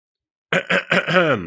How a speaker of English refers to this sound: I imagine he's clearing his throat.